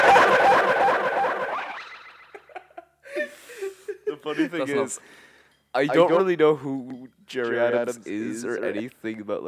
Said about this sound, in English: Yeah, put the echo effect on it. Jerry Adams.